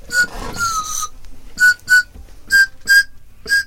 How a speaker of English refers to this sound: There you go, the scared, weird little guys there with the whistle pop song.